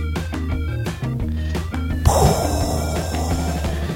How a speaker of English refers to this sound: That was supposed to be a bomb, but... Oh. I guess it blew a fuse. I think someone blew out the bomb?